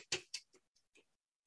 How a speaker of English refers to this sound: And there's that sound of like a ticking clock.